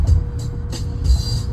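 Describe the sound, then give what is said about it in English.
Steady low rumble of street traffic in Detroit, engines droning with a few brief airy hisses from passing vehicles. No one speaks. “But anyway, that Detroit traffic for you.”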